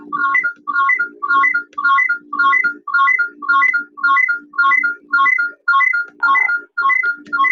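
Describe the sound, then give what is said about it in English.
A phone ringtone plays during a group call, a short repeating melodic phrase about a dozen times in steady rhythm, loud, with a faint low hum underneath and no talking. “Can you mute your phone?”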